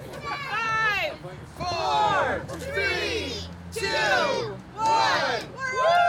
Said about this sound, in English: And with the important celebration taken care of, it was time to open the doors and to welcome the eager crowd inside.